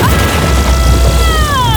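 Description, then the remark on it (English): A loud, sustained explosive blast from a lightning spell being cast, with a deep rumbling low end and crackling, sizzling high tones that sweep downward, like a burst of electrical energy. No one speaks. “That was a serious blast.”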